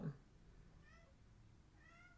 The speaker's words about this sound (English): Oh, I was listening to Petunia meow. She's crying.